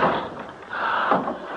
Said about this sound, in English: What was that? Something closed the front door. It's stuck. I can't get it open.